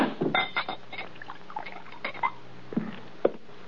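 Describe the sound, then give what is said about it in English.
A drink is poured into a glass inside a wagon, a gurgling trickle broken by small glassy clinks and knocks, fairly quiet and with no one speaking. “Pour this down.”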